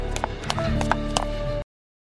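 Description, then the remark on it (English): A handful of sharp, irregularly spaced footsteps sound effect land over a steady musical backdrop, clear, then everything cuts off abruptly. “Those are real 18th century footsteps.”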